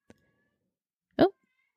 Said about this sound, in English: That's Niles. Oh, it's nice. He sounds like he's crying. These cats tonight.